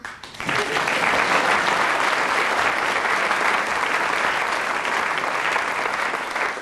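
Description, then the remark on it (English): A crowd breaks into loud, sustained applause for a late arrival at a programme, a dense wash of clapping that starts abruptly and holds steady for several seconds, enthusiastic. “So what I'm going to do is that the next time the audience applauds a late arrival vociferously, we shall close the programme.”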